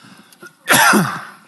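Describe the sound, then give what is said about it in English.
A single harsh, raspy cough bursts out loudly, trailing off with a rough throaty rattle after a brief quiet moment. “This cough has to go in the name of Jesus.”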